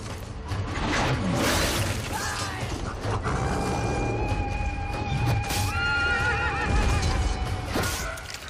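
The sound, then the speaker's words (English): Several horses whinny loudly over a dense, continuous rumble of pounding hooves and creaking tack, like a cavalry charge with no voices. “And we shot this sort of next to the big stage where the main battle arena was, because we had to put down a surface that the horses could run on.”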